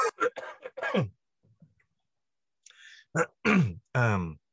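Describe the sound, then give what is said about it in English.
A person clears their throat several times in close, rough bursts, with a short quiet pause between two clusters of hacking, voiced rasps. “You know, then it's, sorry, I'm having to clear my throat again.”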